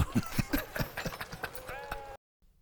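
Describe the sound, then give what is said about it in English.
A horse's hooves clip-clop in a quick, steady rhythm while people talk over them, and then the sound cuts off abruptly into near silence. “I think I heard some shit drop from the horse's ass.”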